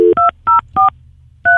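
Telephone keypad tones beep out in quick succession as a phone call is dialed, about five short, loud dual-pitch beeps with brief gaps and a longer pause before the last one. No one speaks.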